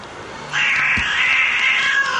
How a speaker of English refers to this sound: Watching cats have sex.